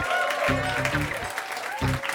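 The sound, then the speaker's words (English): A crowd applauds the evening's panel with steady, dense clapping that stays loud for the whole stretch, joined by a few cheers and whoops rising over the noise. “Please, everybody, give a round of applause for the panel tonight.”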